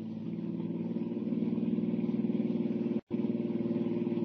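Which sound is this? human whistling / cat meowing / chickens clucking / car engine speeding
car engine speeding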